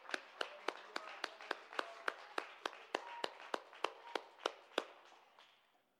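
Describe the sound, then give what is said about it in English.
A group claps hands together in praise of God in a steady, even rhythm, about eighteen crisp claps in unison over a faint crowd murmur, with the clapping tapering off at the end. “Let's clap our hands and give him great praise.”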